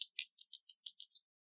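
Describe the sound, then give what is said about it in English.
Dice, rolled for a game move on the 'sharp' stat, clatter across a hard surface in a quick series of about eight sharp, bright clicks that slow and fade over a second before stopping. No voices are heard. “So if there's not shit going down already, roll the dice, because there's going to be more shit going down.”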